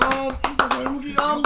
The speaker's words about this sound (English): Clap it up, guys. Yeah, let's just clap it up, man.